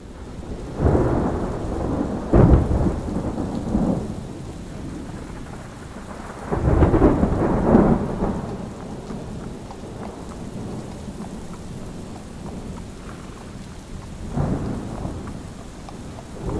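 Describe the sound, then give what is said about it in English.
A thunderstorm with steady heavy rain hissing throughout, broken by several deep rolling rumbles of thunder that swell and fade, the loudest near the start and middle. No one speaks. “Beyond the veil of rain, and occasionally illuminated by flashes of lightning, her new home can be seen in the distance, getting closer and closer.”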